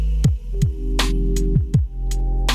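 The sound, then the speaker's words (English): A deep electrical hum throbs steadily while short, harsh bursts of static interference on the line crackle in at irregular intervals, loud, with no voices. “Excuse the interference.”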